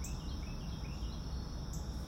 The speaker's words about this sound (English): As you can hear, the birds are out welcoming us to this brand new day. And I just love being out on the deck so I can listen to the birds and anything else that wants to share good news with me.